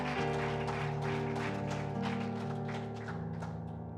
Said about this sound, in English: If you believe all that's going to happen, just give the Lord a hand clap.